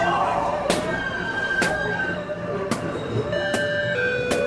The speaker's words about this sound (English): Sorry about that, folks. Bit of a confusing mess right now. All these balloons are popping full of something like tea leaves, I think.